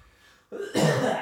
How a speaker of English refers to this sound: That was a cough, not a sneeze.